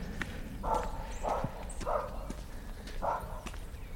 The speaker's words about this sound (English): Beautiful farmhouse, whitewashed stone, some lovely bantams. Oh, and a dog. So there is some noise.